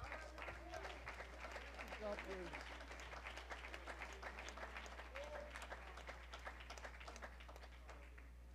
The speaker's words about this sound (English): You believe it? Would you clap and shout?